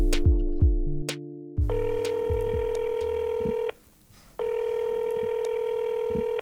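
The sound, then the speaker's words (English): A phone number is dialed in a quick run of keypad beeps for a call to a friend, then two long electronic ringing tones sound, separated by a brief pause. The sounds are clear, with no talking. “We're on the phone with my buddy”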